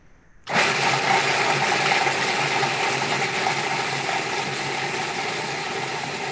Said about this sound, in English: So is it okay if I make a little blender noise right Absolutely. now? Of course. Thank you for asking.